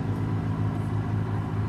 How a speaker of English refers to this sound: There's a tractor going by, in case you want to hold it close and talk quiet. That is an awesome train. Oh, yeah. Oh, it's the train.